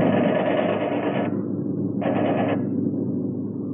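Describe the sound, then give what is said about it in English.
A steady droning airplane engine runs throughout, from a plane carrying patients, while a Messerschmitt on its tail fires two bursts of rapid machine-gun fire that rattle over it, a long burst first and then a shorter one after a brief pause. “There's a Messerschmitt on our tail. He's shooting at us.”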